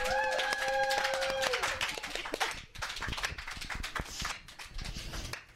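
An audience claps in an uneven, scattered patter for several seconds to welcome Bible Bitches, the claps loud and overlapping without a steady rhythm, with a brief high whoop or cheer near the start.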